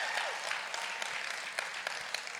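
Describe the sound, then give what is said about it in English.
An audience clapping together during a sermon, a dense, steady patter of many hands at moderate loudness with a few sharper claps standing out, lasting a couple of seconds with no talking over it. “Y'all were clapping.”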